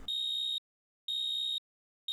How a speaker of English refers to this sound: The sound of your alarm goes off, and you're feeling kind of groggy.